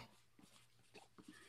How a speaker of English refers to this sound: Here's my buddy. Man, here's my buddy gonna say hello. Say hello. Dog, man. Come on.